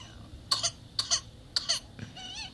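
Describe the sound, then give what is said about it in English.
A baby with whooping cough gives three sharp, evenly spaced coughs, followed by a thin, high-pitched wheezing intake of breath. No one speaks. “Aw, baby struggling to breathe.”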